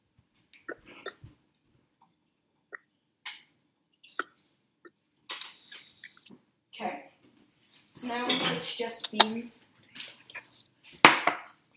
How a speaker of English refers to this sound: Okay, so now I have my beans, and they're out of the microwave. And I still have a little bit of liquid left, and we don't want any of the liquid. So I'm gonna strain those, and then pour them back into my bowl.